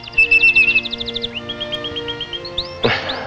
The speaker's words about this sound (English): Like that little old bird up there. Listen to him.